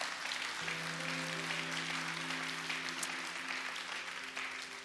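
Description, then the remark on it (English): An audience claps their hands in a dense, steady wash of applause lasting the whole clip, with a sustained low musical chord, like an organ, entering underneath shortly after it begins. “Come on and clap your hands today all over this room.”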